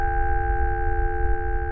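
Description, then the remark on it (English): A simulated tinnitus ringing: a steady, unbroken high-pitched tone held for about two seconds over a low, muffled rumble, with no voices. “So often patients report ringing or buzzing sound or a dullness to their hearing after they've been exposed to loud noise.”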